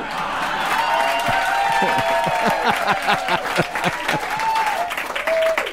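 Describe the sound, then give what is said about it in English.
An audience breaks into steady, dense applause welcoming guest Dick Cavett, loud and going on for several seconds, with a few cheers and whoops rising over the clapping. “Can we hear the rest of them applaud?”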